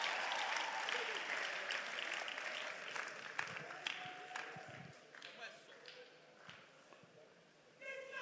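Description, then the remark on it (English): A church audience claps for the dancing start in a steady, dense burst of applause that stays loud for several seconds, then thins and fades toward the end, with a faint tone lingering underneath. “Oh, clap for the dancing start.”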